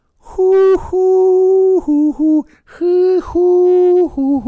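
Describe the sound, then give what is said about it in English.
A voice imitates a lute with sustained, tonal hooting notes, two phrases of long held tones followed by shorter stepped notes, loud, sounding much like an owl's hoot. “Is that it? Is a lute just an owl in a paper towel roll?”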